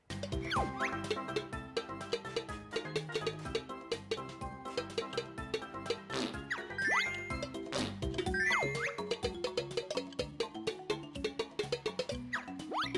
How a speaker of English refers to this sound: Like there's in one of like the beach levels, you're talking to like a pail or like a bucket that can talk, and his talking is like a sound of a bucket like clinking.